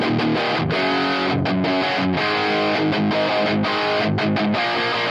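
Overdriven electric guitar played through a crunch tone with a drive pedal switched in, thick crunchy tone, chords strummed loud and continuous with brief gaps between phrases, saturated and gritty throughout, no voices.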